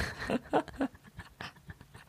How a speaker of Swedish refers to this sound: Andas väldigt mycket genom näsan.